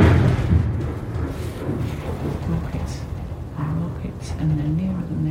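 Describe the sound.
A deep, heavy bomb explosion booms close by in Gaza, its low rumble rolling on for several seconds while faint voices carry in the background.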